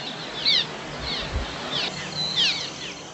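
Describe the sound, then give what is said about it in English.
A swallow calls in a series of short, high chirping twitters, about four bursts spaced roughly half a second apart, over a steady background hiss. “Here is the bird's call.”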